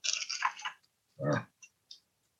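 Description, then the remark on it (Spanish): Pages of an old Bible rustle and crinkle as they are turned to the Gospel of Luke, chapter 6, followed by a louder papery peel as stuck leaves pull apart, then two faint ticks. “Ya la Biblia está viejita, ya están las hojas, se pegan.”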